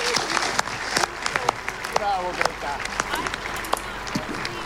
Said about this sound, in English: Applause, please. Bravo.